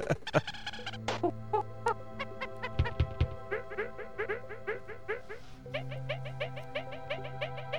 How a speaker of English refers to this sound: All right. Those monkey sounds means it's time for the lightning round.